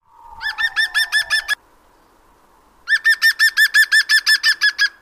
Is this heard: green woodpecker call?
yes